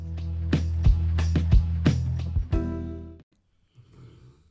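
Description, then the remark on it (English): A dog, Farig, snores loudly, a rough, droning breath broken by rattling snorts, cutting off after about three seconds into quieter, softer breathing. “Farig knows out here snoring like a fucking bear.”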